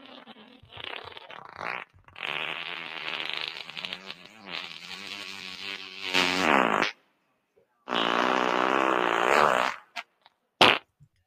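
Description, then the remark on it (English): A long, loud, wet fart with a sputtering, flapping texture stretches for several seconds, followed after a short pause by a second rasping burst and a brief pop at the end. Prominent, no talking. “Gentlemen, that was a fart.”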